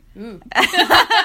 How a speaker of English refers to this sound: You know when a burp, like, really surprises you? Like, normally you can, like, hold it together, but that one just, like, ninja attacked for you. Yeah, like, but it was cute, though. It was a cute little